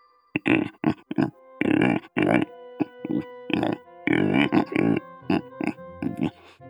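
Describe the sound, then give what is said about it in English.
A pig covered with something blue grunts and snuffles as it nuzzles a person's face and nibbles on their beard, in a rapid series of short, throaty bursts with brief pauses between them, fairly loud and with no other sounds around it. “As pain returns to you, the vision fades, and you gaze up into the porcine eyes of a pig that is covered with something blue as it is nuzzling your face and nibbling on your beard.”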